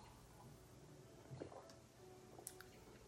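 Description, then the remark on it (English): A couple of quiet, wet sips of cold water, with soft slurping and a faint swallow against a low background hiss; no one speaks. “Oh, nice cold water.”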